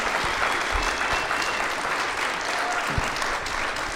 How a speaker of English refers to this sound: I have one more thing I just want to share, but would you guys give these guys a round of applause? And say, thank you.